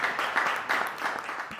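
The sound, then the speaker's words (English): A crowd applauds the volunteers at a Startup San Diego event with dense, continuous clapping that holds a steady level throughout, swelling slightly in waves, with no voices standing out. “Give it a round of applause for the volunteers.”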